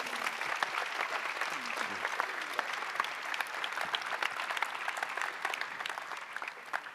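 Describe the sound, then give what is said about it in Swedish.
An audience applauds steadily, a dense wash of many hands clapping at an even loudness for the whole stretch, with no pauses or swells and no one speaking. “Ja, en applåd.”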